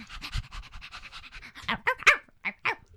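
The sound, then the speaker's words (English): A rescue dog pants in quick, steady rhythmic breaths, then gives a few louder, sharper huffs and whiny exhales toward the end. No one speaks. “Yeah, Your Majesty, you can fuck my rescue dog. It's had a terrible life.”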